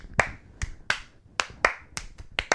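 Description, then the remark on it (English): A series of about eight sharp hand claps made to sync audio, fairly loud, spaced irregularly with short gaps, with no talking in between. “Claps.”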